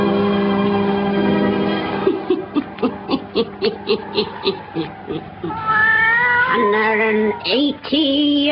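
A black cat named Satan yowls loudly, starting with a long sustained wail, breaking into a choppy run of short pulsing cries, then ending in rising, wavering drawn-out yowls.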